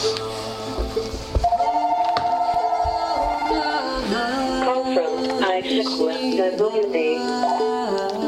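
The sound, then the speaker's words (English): A phone that was not unplugged rings with a melodic electronic ringtone, its sustained tones shifting pitch steadily for several seconds, fairly loud, with no one talking over it. “Oops, I forgot to unplug the phone.”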